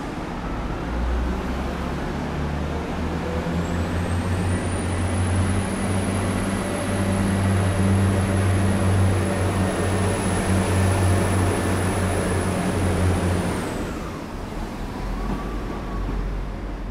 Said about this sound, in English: They seem to come at a rush here at Shrewsbury Station. We've had about 20 minutes of nothing, and then suddenly an awful lot of trains. And of course it is Sunday afternoon.